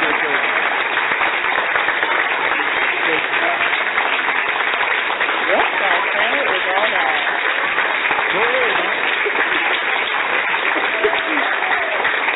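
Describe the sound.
Steady, dense clapping from a crowd fills the whole stretch, a continuous patter of many hands, with a few voices speaking over it.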